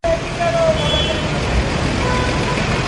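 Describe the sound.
Busy street traffic at an intersection in Harare, Zimbabwe, where street vendors move between cars selling bottled water, rumbles steadily with engines droning, a brief horn-like tone near the start, and indistinct voices mixed into the noise.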